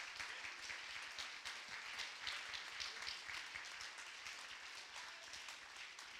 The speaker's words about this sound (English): Let's stand to our feet and clap our hands. Come on, let's stand to our feet and clap our hands to the Lord today.